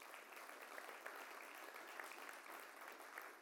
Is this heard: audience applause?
yes